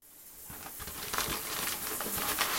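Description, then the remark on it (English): Stripy wrapping paper crinkles and rustles in a steady stream of irregular crackles as it is handled and unwrapped, with no voices. “It's like wrapped up inside in some stripy wrapping paper.”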